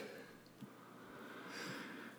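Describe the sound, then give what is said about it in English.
A single sneeze: a breathy, rising intake of air, then a sudden sharp, loud burst at the very end, after a stretch of quiet. “Bless you”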